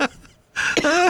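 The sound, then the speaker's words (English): A short, harsh cough, then after a brief pause a louder, raspy burst that trails into a strained, voiced wheeze, like someone caught in a coughing spell. “These little cough spells come and they go.”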